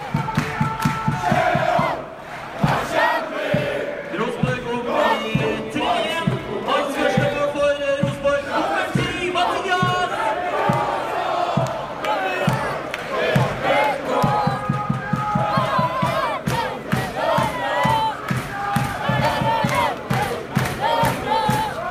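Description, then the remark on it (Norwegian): A large stadium crowd on the Øvre Øst stand sings the football chant "sjalalalalalalala" in loud, sustained unison, with a steady rhythmic pulse beneath it. The voice of a very young fan singing along is buried in the mass of singing. “Det handler om en svært ung nippan som på Øvre Øst og synger sjalalalalalalala.”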